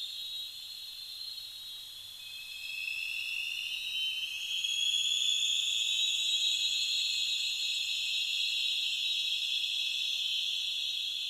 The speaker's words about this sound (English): Also, it was loud enough that you can hear the sonar is essentially reflecting, echoing back and forth over the canyon walls.